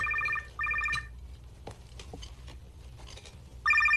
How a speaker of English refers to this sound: Now, this is, so Larry is still at the table, and his phone is going to ring in the dining room.